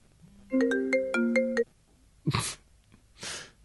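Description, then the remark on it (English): A cell phone ringtone plays a bright, short melodic phrase of stacked tones for about a second, then stops, followed by two brief breathy bursts of noise. “Don't call my cell phone. Call the Skype line.”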